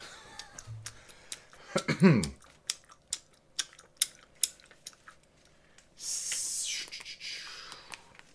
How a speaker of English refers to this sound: Moment of silence for Robin Williams. That was an extremely short moment since you could hear you chewing.